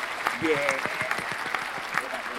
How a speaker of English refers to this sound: And let's give her a round of applause.